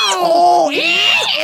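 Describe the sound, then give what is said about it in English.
A voice imitates a donkey with strained, warbling noises, the pitch sliding up and down through a couple of wavering brays over about a second and a half, loud and alone. “And the donkey was making all sorts of strange noises.”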